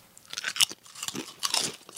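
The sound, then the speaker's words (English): Crisp, crackly crunches of someone chewing Lay's potato chips, a rapid series of brittle bursts with bright high-pitched snaps, fairly quiet and with no talking. “Although I'm going to try a Lay's and see if it has the same thing.”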